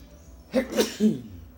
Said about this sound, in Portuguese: Oi, espirrei, desculpa.